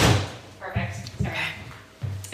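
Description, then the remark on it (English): A door is pushed shut to keep out loud airplane noise, with a few dull low thuds and a closing bump, then a final knock as it settles. A muffled voice sounds faintly in the background. “I'm just going to really quickly close the door because the airplanes are really loud.”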